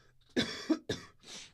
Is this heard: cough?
yes